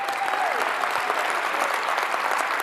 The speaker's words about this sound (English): So how about a huge round of applause for our great and faithful God?